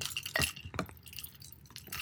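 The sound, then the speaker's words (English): Sample pint glasses clink together in a few quick, bright knocks, with high ringing tones over a low background murmur, followed by softer taps and rattles. “I actually do have sample glasses too.”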